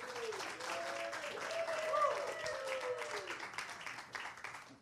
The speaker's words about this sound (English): he's our speaker, so y'all give him a round of applause.